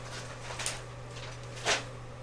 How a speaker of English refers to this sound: My dog is shredding paper, and I was letting him, but then it just got louder and louder.